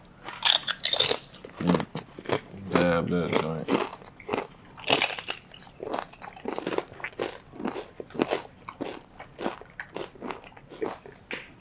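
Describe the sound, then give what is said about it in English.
A crisp snack is bitten and chewed while tasting arbol salsa, a spicy salsa. Sharp crunches and crackles come in an irregular rhythm, fairly loud, broken by brief murmured vocal sounds between bites. “Let's find out if it's a simple taste.”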